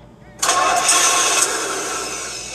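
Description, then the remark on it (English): A car engine sound effect bursts into life after a brief quiet moment, then holds a loud, rough, steady roar that eases off slightly toward the end. “Let's try this. Cars. All right, here we go. Let's go into the world of cars.”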